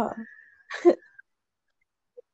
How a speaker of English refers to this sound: No, it's okay. It's bad for you to hold it in. Just let that sneeze out.